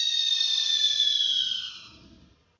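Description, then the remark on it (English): A single shrill, piercing scream holds steady at a high pitch, then sags slightly and fades away over a couple of seconds, heard alone with no talking. “And as she did so, the most horrific scream erupted from the dark abyss.”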